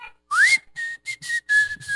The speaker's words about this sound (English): And he whistled through his teeth. So I learned how to do that so I could be like my dad. But he was just, because, you know, when you whistle through your teeth, you can smile.